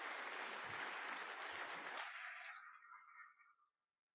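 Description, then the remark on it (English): A burst of audience applause for a speaker's questions, dense and loud for about two seconds, then thinning out and tapering away to silence by the fourth second. “could you clap him for those questions, please?”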